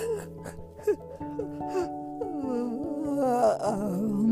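A long, drawn-out vocal yawn, its pitch sliding and wavering into a whimpering tone, heard over steady sustained music notes.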